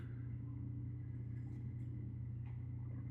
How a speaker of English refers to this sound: Sort of motorcycle or something, sorry.